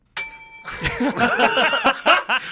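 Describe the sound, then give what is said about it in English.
A single bright bell ding, rung on the news show The News Unlocked, rings out sharply at the start and hangs briefly before fading, followed right away by people laughing and talking over its tail. “That's not how you're abusing the bell, and now I abstain from this conversation.”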